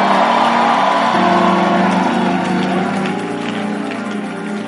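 A church audience claps and shouts together for the Lord in a dense, continuous roar, with raised voices and whoops over steady applause that holds loud for several seconds before easing slightly.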